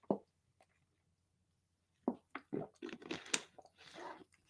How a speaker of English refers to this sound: I'm just going to have a little bit of water.